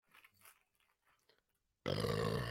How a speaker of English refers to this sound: Him burping or me saying, I've got some things?